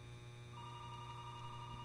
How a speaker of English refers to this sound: I've never heard that phone ring. Oh, yeah, that phone's ringing. That's supposed to not ring while we're on the air.